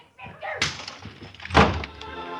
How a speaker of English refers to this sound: She grabbed the handy oversized ashtray and let it fly at us, then beat it.